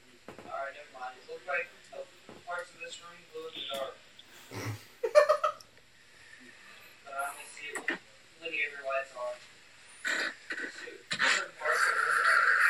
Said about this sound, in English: And that's just me breathing because I was getting chills.